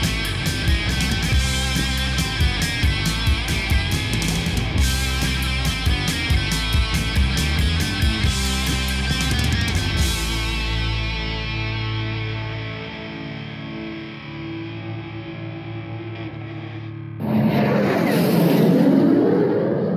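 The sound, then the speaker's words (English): Layered music with a steady beat gives way to sustained droning tones, then a loud, rushing roar of an aircraft flyby, buzzing a fishing boat off the coast of San Diego, bursts in over the final few seconds. “Hey, psst, that flyby sound just now? That was me buzzing episode 3 guest Vern Vernalis on his fishing boat off the coast of San Diego a couple years ago.”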